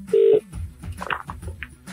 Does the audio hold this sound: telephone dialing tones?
yes